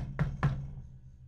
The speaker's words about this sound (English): So should I start off by knocking? Sure.